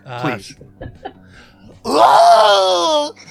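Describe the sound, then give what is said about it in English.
A man's voice imitates the pained scream of a character who has just been bitten: a short rising wail with a few breathy gasps, then a long, loud, strained cry held for over a second before cutting off. “he shouts out with a scream. Can we hear what the scream might have sounded like”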